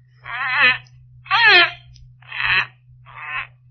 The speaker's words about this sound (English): The bird was moving about in the cage now, nodding his head in a very peculiar manner, uttering the most extraordinary sounds. I began to realize that he was imitating the thing he saw standing by his cage.